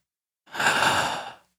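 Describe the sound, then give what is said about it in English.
A single deep, airy inhalation during a breathing exercise, swelling for about a second before fading, with silence before and after and no talking. “We're going to walk you through a morning show breathing exercise. Breathe in.”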